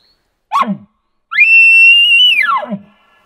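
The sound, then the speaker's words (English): An imitated elk call: a single short, sharp bark, then after a brief pause a long, shrill, whistling scream that rises, holds steady, and drops off at the end. Loud, no talking. “So the bark and the scream.”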